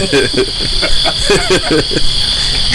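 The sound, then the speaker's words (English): Crickets chirp in a steady, high-pitched trill that runs the whole time, fairly loud, with faint murmuring voices underneath. “Oh, cue the crickets.”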